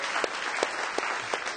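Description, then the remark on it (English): An audience gives a big hand clap for the Lord, dense, steady hand clapping, a continuous bright crackle of many hands with a few sharper claps standing out at regular intervals. “We can give the Lord now a big hand clap, can't we?”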